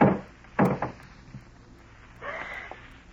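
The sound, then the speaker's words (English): A heavy garage door is lifted open: a couple of solid clunks, then a grinding, rolling rattle as it slides along its track, moderately loud with no voices. “A moment later, you slip quietly out the back door, hurry to the garage, and lift the door.”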